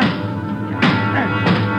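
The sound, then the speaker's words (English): Two sharp metallic kicks strike a bent elevator control lever about half a second apart, each a loud clanging thud over a steady, dense mechanical rumble. “There's another elevator. The control lever's bent. Let's try it anyway. Yeah. All right, kick the control lever. Kick it”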